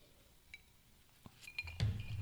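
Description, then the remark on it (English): Glasses clink together several times in a toast, bright ringing taps, with a soft thump and low rustling noise toward the end. “Cheers to it. Cheers to it.”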